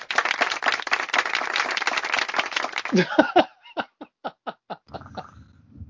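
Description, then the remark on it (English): A round of applause: dense, rapid clapping for about three seconds, then thinning to a handful of separate, spaced claps before fading out. A brief chuckle seems to surface as it dies down. “You are going to get, and you've got, a round of applause for that.”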